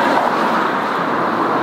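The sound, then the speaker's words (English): A car pulls to a stop on a street, its steady engine and road rumble filling the moment loudly, with no voices heard. “Oh my god, if we walked like a bit faster, that car could not have stopped.”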